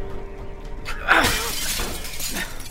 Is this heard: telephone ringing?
no